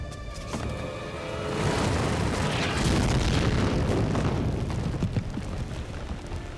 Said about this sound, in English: They're trying to make their way out, but they're going to have to get a little help here, and let's open it with a bit of an explosion, so brace yourself.